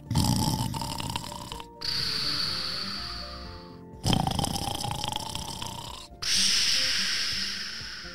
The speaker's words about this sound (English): But the one thing that you have to know is that Banks sleeps a lot. And he snores.